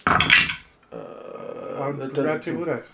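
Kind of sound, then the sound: dice being rolled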